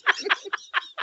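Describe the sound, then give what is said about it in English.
A pet bird named Wizbird clucks in a quick run of about five short, bright bursts, evenly spaced and fairly loud, with no talking over them. “There's a stinky grump in the back who doesn't talk.”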